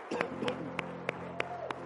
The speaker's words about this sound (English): Can you give that big guy a hand clap?